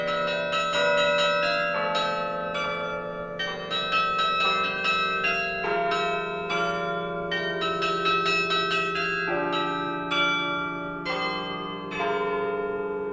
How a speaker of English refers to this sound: it's kind of a throwback to the old days of bells and bell ringers